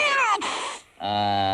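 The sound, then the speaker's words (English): A black cat called the Professor gives two loud meows: the first a high, slightly falling wail, then after a brief pause a lower, steady, drawn-out meow. No talking is heard. “He's nothing but a feline murderer as far as I'm concerned.”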